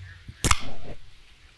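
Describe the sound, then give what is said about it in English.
A can of 2021 Primitivo Rosé wine cracks open with one sharp pop, followed by a short fizzing hiss that fades within half a second. No one speaks. “A can of 2021 Primitivo Rosé. Nice. Cracked into a beautiful glass.”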